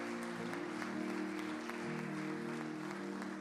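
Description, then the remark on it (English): An audience claps their hands together in sustained praise to Jesus, a dense, steady wash of applause with a low organ-like tone droning underneath. “Can you give Jesus a hand clap of praise?”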